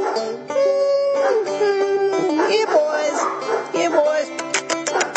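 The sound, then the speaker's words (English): Dogs whine and whimper excitedly in a steady stream of high, wavering cries as bacon grease is dumped out back for them onto their kibble, with a few short, sharp barks breaking in toward the end. “Oh, they love that bacon grease on their kibble.”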